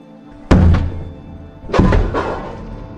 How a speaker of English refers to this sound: An undercover officer knocks on her door.